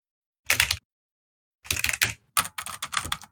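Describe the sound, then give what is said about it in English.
Bursts of someone typing randomly on a computer keyboard, a short flurry of clicks, a pause, then longer uneven runs of keystrokes, fairly clear with no voices. “Just typing randomly, and he's like, don't mind me.”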